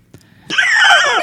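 A single loud, shrill scream, said to suit the Jersey Devil, bursts in after a brief quiet lead-in, holding steady for nearly a second with a harsh, eerie, wavering tone before cutting off abruptly.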